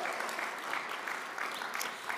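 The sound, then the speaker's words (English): An audience applauds steadily in appreciation of its lead pastors, a dense wash of many hands clapping at a fairly even loudness throughout with no one speaking over it. “That amount of applause, that good?”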